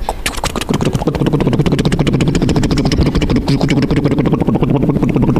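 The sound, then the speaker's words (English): A helicopter's rotor thumps in a fast, steady chop over a droning engine, loud and continuous for several seconds with no voices. “Great leaders then come with a helicopter.”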